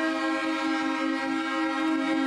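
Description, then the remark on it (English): The air horn of a big Kenworth truck blares in one long, unbroken blast, loud, holding a steady brassy chord from start to finish with no voices around it. “Who's that driving the big Kenworth?”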